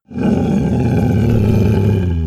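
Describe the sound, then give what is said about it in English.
A deep, sustained monstrous roar from Cerberus, the two-headed demon dog guarding the entrance to hell, loud and rumbling with a growling, gravelly texture, holding steady for a couple of seconds without a break. “The foul demon Cerberus, the two-headed dog, guardian at the entrance to hell.”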